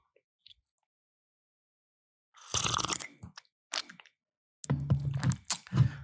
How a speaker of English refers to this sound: Excuse me, gotta take a sip of my coffee.